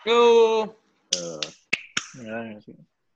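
Two sharp, close hand claps in quick succession, set between short stretches of loud, tonal vocal sound.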